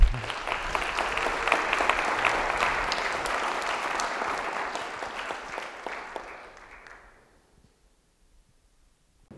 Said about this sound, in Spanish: Un aplauso, por favor.